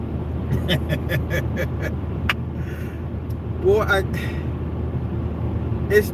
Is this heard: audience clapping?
no